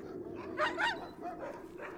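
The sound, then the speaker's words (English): Several working sled huskies, chained to wooden dog houses at an off-grid cabin in the woods, bark and yip together in a busy overlapping chorus, with two louder barks standing out near the middle over a steady outdoor background. “These are working huskies chained up to wooden dog houses most of the day.”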